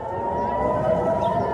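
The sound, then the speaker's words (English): A loud, sustained air-raid siren in Jerusalem wails steadily as an incoming rocket warning, its rising and falling tone sounding with no speech over it. “And suddenly we hear sirens wailing, incoming rocket warnings.”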